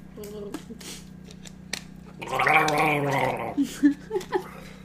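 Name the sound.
gargling water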